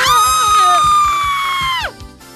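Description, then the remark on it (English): Two voices scream loudly together in a long, sustained high-pitched shriek that holds steady for nearly two seconds, then slides downward and breaks off abruptly. “Was that too loud? Yes. But it's fine, because we're only going to do it once”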